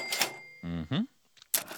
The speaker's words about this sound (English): Cash register sound.